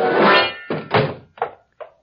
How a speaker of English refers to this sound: I backed into the room and Baldy kicked the door shut.